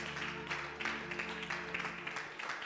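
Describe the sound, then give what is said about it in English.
A church audience claps steadily for the Lord for a few seconds, a dense, even patter of many hands with no voices over it, while a low, faint sustained tone hums underneath. “Someone give the Lord a clap of it.”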